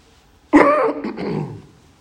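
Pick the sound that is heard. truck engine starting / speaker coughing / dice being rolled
speaker coughing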